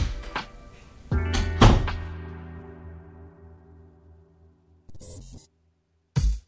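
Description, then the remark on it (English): A door thumps shut with a heavy, resonant bang that rings and fades over a few seconds, followed by a couple of shorter rustling knocks; the door is closed during recording of NPR's It's Been a Minute. “Hey, y'all, can you close the door real quick?”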